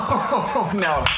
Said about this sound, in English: That's a clap sound effect.